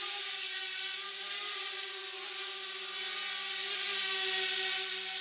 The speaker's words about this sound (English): We are going to learn all about how these little flying machines, sometimes no bigger than the palm of your hand, go from the lab to the skies in perfect synchrony.